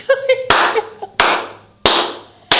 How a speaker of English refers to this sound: Man, can we slow clap her? She's cold.